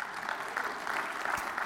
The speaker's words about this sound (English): Just, I mean, yeah, you can give him an applause. Yeah.